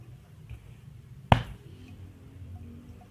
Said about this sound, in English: Sound of door crashing that sounded very close. Sure enough, that person broke the door of her bedroom.